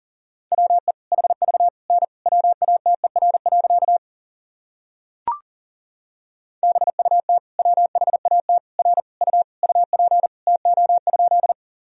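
Rapid Morse code at about 40 words per minute, sending practice sentences built from the top 100 words and abbreviations: a single mid-pitched beep keyed in quick dots and dashes, two long runs split by a pause with one sharp click.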